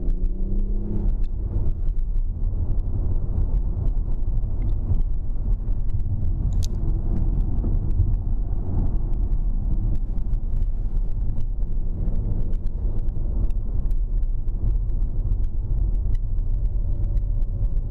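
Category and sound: vehicle, car braking hard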